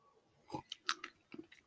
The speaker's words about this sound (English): I want you to sit in this awkward silence for a second as I sip this nice warm cup of Red Bay coffee.